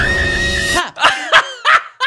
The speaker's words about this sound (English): Him screaming like a girl there, that gets me.